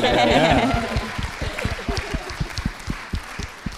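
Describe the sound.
A voice laughs or speaks briefly, then a small round of applause follows: a few hands clapping in quick, uneven bursts that stay moderate and thin out toward the end.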